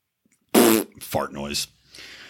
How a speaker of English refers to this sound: Fart noise.